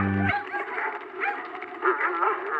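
A pack of dogs barking and yipping excitedly, their high, overlapping yelps crowding together continuously and loudly for a couple of seconds.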